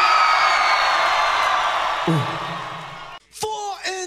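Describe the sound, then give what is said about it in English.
A loud crowd roar fills the air for a few seconds, then cuts off, followed by sharp individual whoops and yells rising in pitch. “Everybody just scream!”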